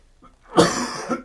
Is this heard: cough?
yes